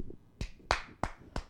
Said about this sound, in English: I don't need an applause? I'm applauding you right now. Hold on.